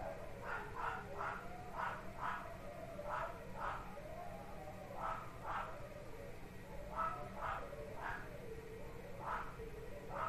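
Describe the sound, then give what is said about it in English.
Three huskies and two small dogs howl together upstairs in a wavering chorus, punctuated by repeated sharp yips, muffled over a steady low background hum. “we got a howl fest upstairs”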